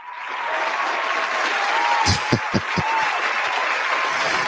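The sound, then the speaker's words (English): A steady wash of applause builds within the first half second and holds at an even level, with a few sharper, louder claps standing out near the middle. “He didn't want to clap for me today.”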